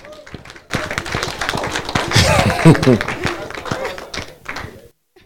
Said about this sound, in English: Clap for the Lord Jesus.